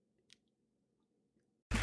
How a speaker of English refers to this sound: So if you've got a cup of water, a bottle of water, anything like that near you, why don't you join me in taking a sip and we'll all enjoy this 5 seconds of doing some bare bones self-care.